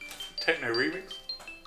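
A short electronic phone notification jingle signalling that someone wants to get in touch: bright, ringing chime tones with a quick swooping melodic figure in the middle, moderately loud and lasting under two seconds.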